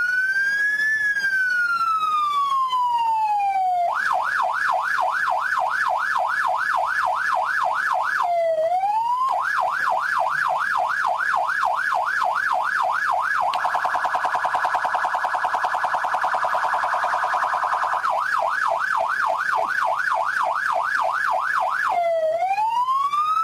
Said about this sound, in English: Would be funny if I thought the problem was with the siren, so I bring a better siren this week.